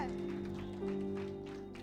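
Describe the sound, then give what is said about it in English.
During a sermon, an audience claps for the Lord Jesus in a dense, steady patter of many hands, with a sustained low musical tone holding underneath throughout the short burst. “Clap for the Lord Jesus.”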